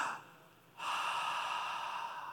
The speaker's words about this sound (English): It means to catch your breath, to breathe in.